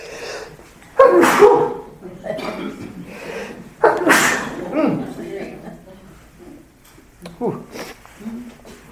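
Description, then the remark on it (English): Two loud sneezes burst out about three seconds apart, each a sharp explosive blast. Quieter breathing and faint vocal sounds follow between and after them. “I'm about to sneeze again.”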